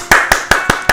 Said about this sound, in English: I hope you heard that loud applause, and God is clapping for you.